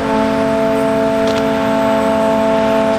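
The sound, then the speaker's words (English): The Lake Express Ferry's foghorn, sounded as the boat sets out on its crossing between Milwaukee and Muskegon, Michigan, gives one long, unbroken blast, a loud, steady, deep tone with rich harmonics that holds for the whole stretch without wavering. No one speaks. “Its foghorn goes off daily whenever a boat sets out.”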